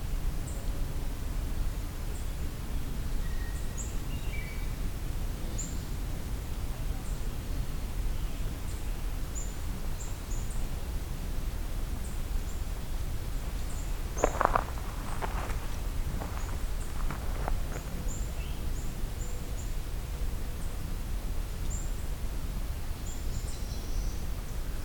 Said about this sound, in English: Oh, I'm seeing some towhees in here, actually. They're digging up leaves. That's what's making all the rustling sounds. Eastern towhees.